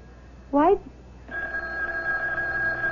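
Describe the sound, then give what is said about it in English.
A telephone rings with a steady, buzzing electronic tone that holds on continuously at moderate volume, after a brief rising vocal sound just before it starts. “Why don't you answer the phone?”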